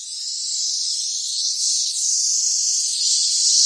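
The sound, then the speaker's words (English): A loud, continuous high-pitched buzzing of cicadas in a single tree by a house during a birthday party fills the whole stretch, a steady hissing drone with slight swells in intensity and no pauses. “I took this video and it was ridiculous of the cicadas on this one tree noisy.”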